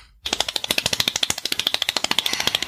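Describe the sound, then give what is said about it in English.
A voice mimics rapid typing, as if typing an actor's name into Google, with a fast, steady burst of sharp mouth clicks, about a dozen per second, fairly loud, running continuously for a few seconds. “That's just how fast I type.”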